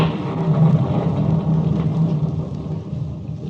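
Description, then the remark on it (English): Low, continuous thunder rumbles steadily throughout, a deep rolling roar that stays fairly loud and swells slightly before easing off a little toward the end, with no voices. “Know them now as the thunder sings its hymn to Hades, and the lightning lashes at the soul of man.”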